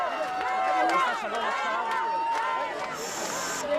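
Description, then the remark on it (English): A large, excited crowd at the airport in Tel Aviv cheers and shouts to welcome home the singer who won the Eurovision contest for Israel, many voices overlapping in a loud, steady roar with a few shrill, whistle-like cries rising above it. “After her win, this was her homecoming she received from the crowds waiting at the airport in Tel Aviv.”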